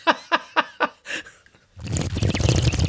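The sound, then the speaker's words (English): A few quick rhythmic vocal bloops, then loud bubbling and gurgling as air is blown through a glass of water, imitating a bong. “But, oh, do you have a glass of water to do your bong sound effect?”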